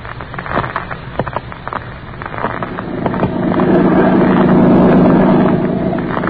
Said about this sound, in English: I sit here in the boat as it skims over the lake toward the mainland.